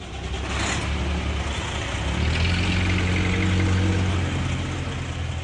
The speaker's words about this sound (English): Back in Havelock, a line of trucks comes and goes from one of the country's largest mussel processing plants. Sanford says it's proud to keep the jobs in Marlborough where the mussels are grown.